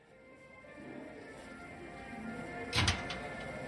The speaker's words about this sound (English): I swung open the door, and the Christmas music roared at us.